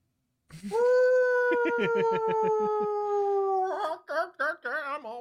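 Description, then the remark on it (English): A voice imitates the bone-chilling howl of a monstrous grandma with a yellow eye in her forehead and a thick purple tail: one long, loud, steady wail with rhythmic pulsing beneath it, breaking into several shorter wavering, warbling cries at the end. “Grandma lets out a bone-chilling howl.”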